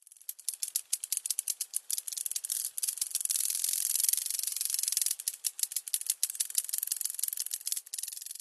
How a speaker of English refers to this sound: It's impossible to ignore now. He's a large grasshopper, his hind wings pale yellow, snapping vehemently as he hovers 3 feet above the grasses. Another grasshopper is responding from 20 feet away in an emphatic contest of crackles and snaps.